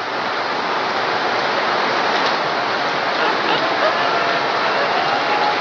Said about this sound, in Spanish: Because we hear the sound of abundance of rain. Porque escuchamos el sonido de la lluvia abundante.